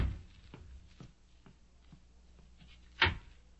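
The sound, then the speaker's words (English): Soft footsteps tap steadily before a sharp latch click as a door is opened to see who is at the door, with no voices. “See who's at the door, Ping.”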